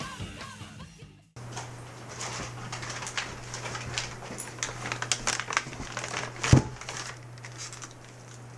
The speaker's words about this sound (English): So if I drink my 40 out of this brown paper bag, is that going to be too much? Is that too distracting? The crinkly noise is a little distracting, yeah.